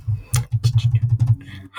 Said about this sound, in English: And then I'm like, let me just get back to work. And then I start typing on my computer. Like, let's end this conversation quickly, please.